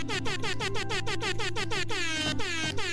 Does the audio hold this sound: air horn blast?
yes